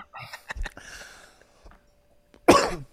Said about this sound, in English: I literally was just coughing. It's just an inconvenient cough.